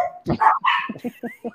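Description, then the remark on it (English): A dog barks, two loud drawn-out barks followed by a quicker run of four or five shorter, softer barks in a choppy rhythm. “Go ahead. I'm glad I only have one dog.”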